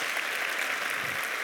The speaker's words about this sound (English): But those that are here, it's so great that you've joined us. Won't you give them a really just a welcoming round of applause?